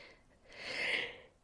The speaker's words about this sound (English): Excuse me. All of a sudden I'm sneezing.